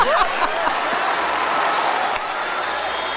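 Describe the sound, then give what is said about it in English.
A crowd claps loudly and continuously, a dense wash of applause with a few excited shouts mixed in near the start, holding steady for a few seconds before easing slightly. “And the crowd goes wild.”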